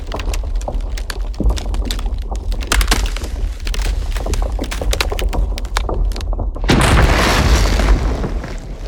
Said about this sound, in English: the towering icebergs around you that are cracking and calving as you're in a zodiac and riding a wave as the iceberg crashes into the sea. It's just so exhilarating.